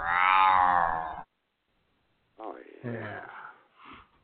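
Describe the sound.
A person voices a loud, drawn-out meow in imitation of a cat. After a short silence, more spoken voices follow.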